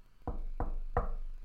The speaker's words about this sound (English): Anneliese began hearing knocking sounds in her bedroom